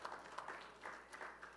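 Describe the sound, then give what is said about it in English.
An audience claps together in a brief, steady burst of applause, many hands patting at once with a soft, dense texture and no one talking over it. “We can clap for that.”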